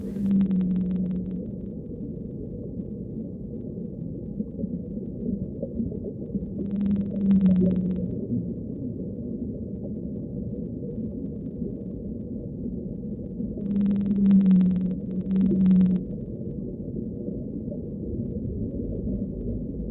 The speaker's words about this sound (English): And here, the song of the blue whale.